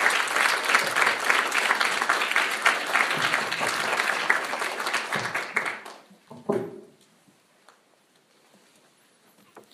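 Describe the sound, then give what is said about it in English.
An audience applauds the whole committee, steadily with dense, crackling clapping for about six seconds, then the clapping thins out and fades to a few scattered claps and quiet. “We can applaud them and the whole committee.”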